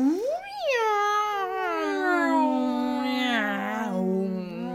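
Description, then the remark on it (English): A person imitates a cat with one long, drawn-out meow that rises sharply, then slides slowly downward with a wavering, whiny tone. It's loud, with no other sounds. “The cat sounds.”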